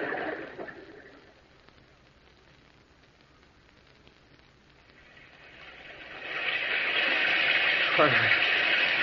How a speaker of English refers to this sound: There's no sun, only this rain.